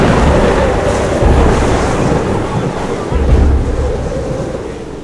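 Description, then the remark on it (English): A roaring stormy sea fills the scene: heavy wind buffets steadily while deep waves surge and crash in rolling bursts, loud, with no voices. “You're heading straight for the storm!”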